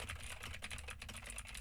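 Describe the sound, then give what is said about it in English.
Rapid, steady clacking of keys on a computer keyboard with Gateron Blue switches, picked up by an M201TG microphone, fairly loud, with a low background hum underneath and no voices. “And I am doing the exact same thing with the exact same keyboard to see how much of my voice and how much of the keyboard the M201TG picks up.”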